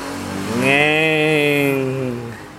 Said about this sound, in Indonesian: Ini ada bocor-bocor motor gitu ya.